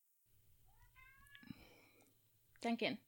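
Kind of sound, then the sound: animal, cat meowing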